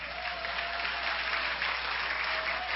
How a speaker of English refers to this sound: Why don't you give him a hand clap? Amen?